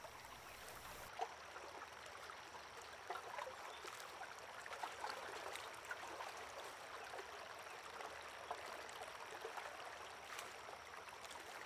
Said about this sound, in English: The soothing sound of the river's lapping water becomes a lullaby, causing you to feel a little drowsy.